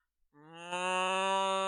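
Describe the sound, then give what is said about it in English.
A person gives a single long, drawn-out moo in imitation of a cow, starting low and swelling louder before holding steady to the end, clear with no other sounds. “There are two cows standing in a field. The first cow goes...”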